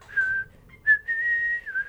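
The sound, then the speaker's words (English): A person whistles a short melodic phrase, clear, with a brief rising note in the middle and a sustained tone that dips at the end; no talking. “I think the who was just the whistle”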